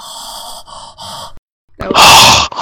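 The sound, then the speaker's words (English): Someone imitates creepy heavy breathing: three raspy breaths in a row, a short pause, then a loud, harsh exhale rushing out. “breathing and snoring”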